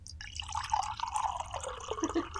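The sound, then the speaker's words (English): A drink of Pink Walls, fresh out of the fridge, is poured into a glass, a steady splashing, gurgling stream lasting a couple of seconds with a few drips, heard on its own without any talking. “We're still drinking Pink Walls. So we're going to fresh out the fridge.”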